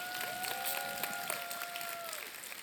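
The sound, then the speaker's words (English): An audience at a church service claps hands together in a dense, steady patter throughout, with a sustained keyboard-like tone holding and sliding in pitch underneath. “Come on, clap your hands. Clap now.”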